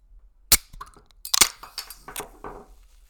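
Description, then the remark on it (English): A drink can being cracked open: a sharp snap, a fumbling cluster of metallic clicks and pops, then a brief fizzy release, with no voices. “That was a terrible crack a cold one.”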